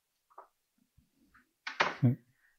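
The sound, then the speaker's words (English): Faint shuffling and small clicks, then a door is opened to let a dog out, with a sharp latch rattle and a low wooden thud, with no one speaking. “the dog Morris. Is now begging to be let out”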